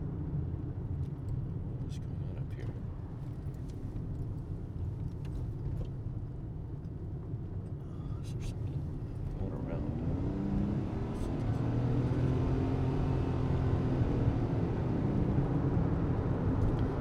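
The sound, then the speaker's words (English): A car engine drones steadily from inside the vehicle, then revs up with a rising whine partway through as the driver accelerates to overtake a slow truck, staying loud. “sorry, I had to pass a very slow truck.”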